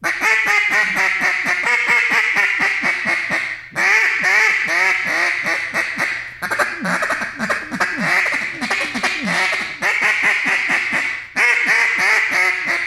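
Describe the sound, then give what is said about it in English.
A duck call blows loud, rapid quacking in long rolling runs, with a couple of brief breaks before the chattering quacks resume, used to call ducks. No talking. “if I'm calling ducks, you know, and say they're right on the treetops, I'm going to start getting ducky with them.”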